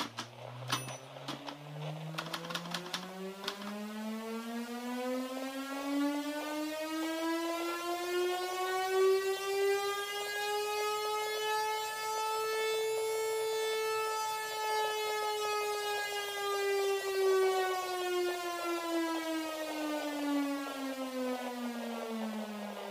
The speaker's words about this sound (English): for in a moment, Green Valley is to test its new air raid and blackout siren. Please stand by, but do not worry. This is only a test.